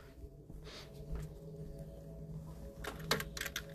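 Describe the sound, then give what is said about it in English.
Quick, irregular clicks of fingers typing on a computer keyboard, with bursts of keystrokes over a steady low hum and no talking. “I'm literally typing this right now so you can see it in real time what I'm talking about.”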